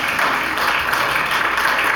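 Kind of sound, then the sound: crowd, audience clapping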